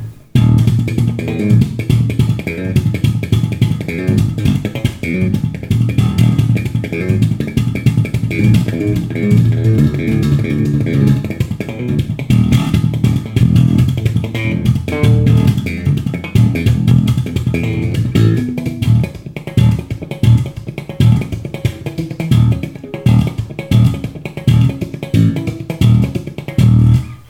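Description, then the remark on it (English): A guitar with a flat, hard-cornered neck is played continuously for almost half a minute, with low, full-bodied notes in a busy rhythmic pattern at a steady, fairly loud level, and no one talking over it. “Yeah, I mean, you let me play that guitar for a second before we turned on the mics, and it's surprising that it seems so playable with just a flat, hard-cornered neck.”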